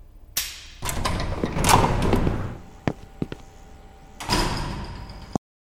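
A big, heavy door slides open with a long rumbling scrape, followed by a couple of sharp knocks and a final deep thud as it closes, loud with no voices.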